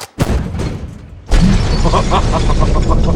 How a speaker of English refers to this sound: Okay. That's the cannon. I just blew up a parked plane.